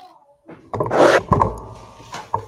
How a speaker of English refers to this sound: Just for you. Smashed his mic.